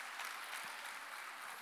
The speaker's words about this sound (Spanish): ¿Cuántos alaban al Señor esta mañana? Denle un aplauso a Él.